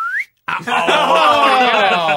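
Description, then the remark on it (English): A short, loud whistled slide glides quickly upward like a swanee whistle, then cuts off; after a brief silence, voices follow, talking or laughing over the rest of the moment. “That was a good swanny whistle noise there.”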